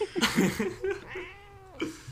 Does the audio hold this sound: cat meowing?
yes